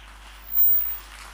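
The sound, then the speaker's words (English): Faint, scattered hand clapping from a crowd, a soft wash of claps that swells briefly in the middle before settling back to a thin patter. “You see, even how weak clapping hands you are doing now, they are transactions.”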